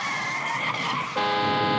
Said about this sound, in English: A car drives up.